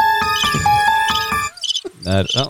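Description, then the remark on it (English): Crickets chirp in a steady, pulsing trill for about a second and a half, fairly loud, before it cuts off and a person starts talking. “Crickets as well.”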